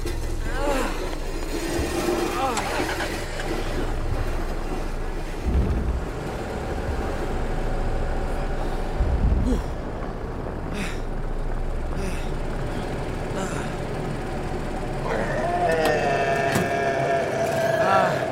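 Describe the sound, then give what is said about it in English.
A heavy truck engine rumbles low and steady as it drives up, with a brief rise in its whining drone near the end. “No, get the truck over here.”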